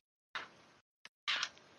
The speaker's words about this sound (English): I don't know why, but I like how I just grabbed a fistful of dice without, you know, how many I needed. Just, because I don't have enough.